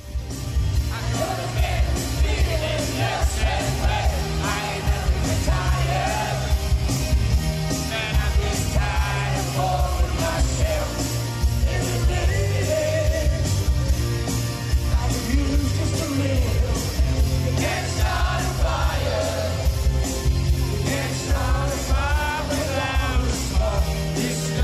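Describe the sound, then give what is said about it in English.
A live rock song plays at full, steady volume while a crowd sings along with the vocal, their ragged massed voices and occasional yells blending into the music throughout. “sounding just as chirpy today as he did 40 years ago, although he's joined by some slightly dodgy backing singers there in the audience on that.”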